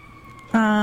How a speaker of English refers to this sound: I'm worried about those sirens. They're coming for us. We're dangerous. Always sirens.